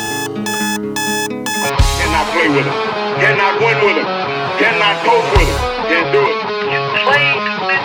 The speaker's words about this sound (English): Hit the alarm.